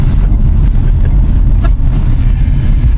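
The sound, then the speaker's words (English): A car engine rumbles loudly and steadily, a deep continuous drone with slight surges, as if pulling away, with no voices. “I've got the car. I'm out of here.”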